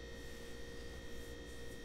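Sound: refrigerator humming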